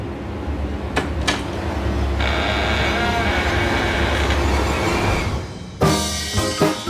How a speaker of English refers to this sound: I've been tracking happiness all morning, and I'm pretty sure it's behind that door. Happiness is behind that door? Are you gonna open it? I guess so. Here it goes.